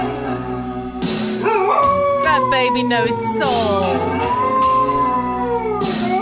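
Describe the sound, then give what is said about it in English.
A dog howls along to a slow country song played by an Alexa speaker, its long wavering howls rising and falling in pitch, while a person briefly speaks near the start. “I love that dog already.”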